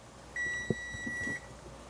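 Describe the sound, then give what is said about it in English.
A kitchen pasta timer gives one steady, high electronic beep lasting about a second, fairly loud, with a soft clunk of kitchenware partway through and no talking. “That was my pasta timer.”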